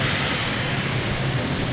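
jet aircraft taking off

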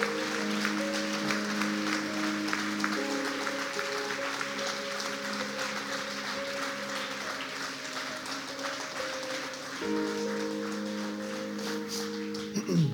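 audience applause

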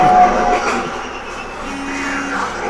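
vehicle horn honking

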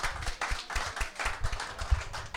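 audience applauding

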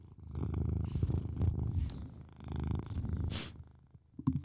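cat purring

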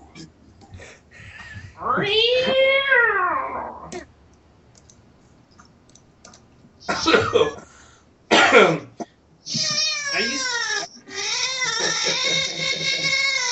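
cat meowing

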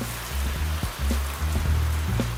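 shower water running

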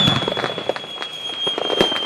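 firework going off

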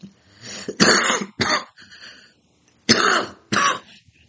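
a little cough

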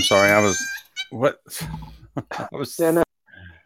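cat meowing

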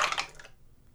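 many dice being rolled

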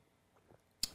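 sipping coffee

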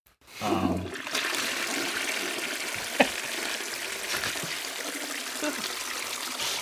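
toilet flush

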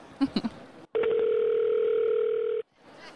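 telephone call ringing out

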